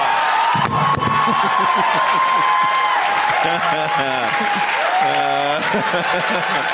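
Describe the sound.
An audience bursts into loud, sustained cheering and applause, with dense clapping filling the whole stretch and excited voices shouting over it.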